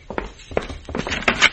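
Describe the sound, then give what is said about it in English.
Someone kicks a door inside a house: a run of about five heavy, dull thuds at an uneven pace, each a short booming knock with some rattle, growing somewhat louder toward the end. “Sounds as if someone is kicking the door.”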